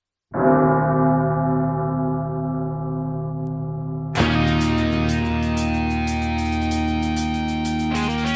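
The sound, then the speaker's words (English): A loud bell rings out with a long, sustained ringing tone, then a second, brighter strike about halfway through adds a clattering shimmer as the ringing carries on to the end. “Ring it.”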